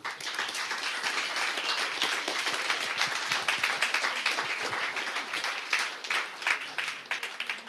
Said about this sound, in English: Please keep that applause going